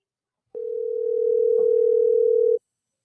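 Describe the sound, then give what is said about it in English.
A single steady electronic phone tone holds for about two seconds, then cuts off cleanly, like one burst of a ringback tone heard through the line, with no voices. “Is it ringing? Yep. It's ringing.”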